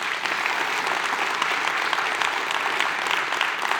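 Steady applause from an audience, a dense, even wash of many hands clapping that holds at a constant level for the whole few seconds, with no voices standing out.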